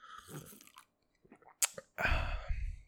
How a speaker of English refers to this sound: Let me get a sip. Let me get a watery sip, dude.